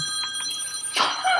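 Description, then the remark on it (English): A mobile phone rings briefly before being silenced, its bright electronic tones sustained with a sharper burst partway through. No one speaks. “If your phone rings during the podcast recording, and it's not mummy duties...”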